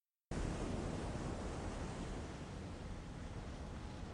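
A loud, steady roar of stormy ocean surf on a beach begins abruptly and continues without pause, a dense wash of crashing water and wind with no voices.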